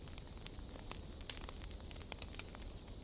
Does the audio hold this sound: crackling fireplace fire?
yes